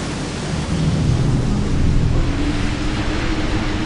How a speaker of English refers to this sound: Then God made it rain for 40 days and nights, flooding the whole earth and destroying everything that lived on the earth.